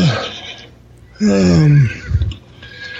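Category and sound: animal, horse neighing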